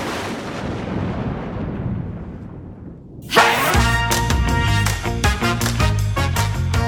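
A loud roll of thunder rumbles and fades over about three seconds, its hiss dying away before upbeat music with a steady beat abruptly kicks in.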